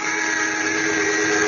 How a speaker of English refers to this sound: Cranston and Margot Lane, on the trail of a ring of alien smugglers they suspect of murder, are shot down in a small cabin plane. The pilot dead, the plane out of control, is zooming toward the ground.